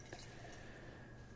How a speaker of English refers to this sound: Premium American 2-Row and a bunch of light crystal malt, apparently. Another small pour. We're only pouring like 3-4 ounces of these beers.